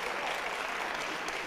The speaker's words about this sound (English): I need somebody to clap their hands one time just to Lord.